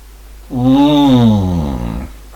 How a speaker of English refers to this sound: Yawning down the microphone, kids.